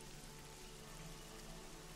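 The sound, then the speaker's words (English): Steady rain falls on a cold day in a soft, continuous hiss with no distinct drops standing out, fairly quiet and even throughout, with a faint low hum underneath and no voices. “It is a cold and rainy day here.”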